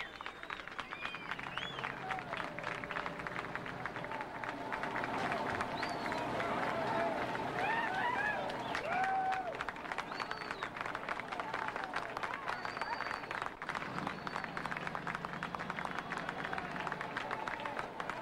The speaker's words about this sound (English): Here she comes. There's clapping.